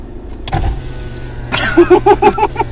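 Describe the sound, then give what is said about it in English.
A car's power window rolls down with a whirring electric motor, rising in a series of quick pulsing squeaks over the steady low hum of an idling engine. No one speaks. “Let's roll down this window and see what we got here.”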